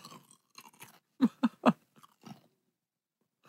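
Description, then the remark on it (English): Loud chewing of a crunchy raw carrot into the microphone, with three sharp crunches in a quick burst amid wetter, softer munching before and after. No one speaks. “Take another bite of what you... Into the mic. And chew loudly like you were just before.”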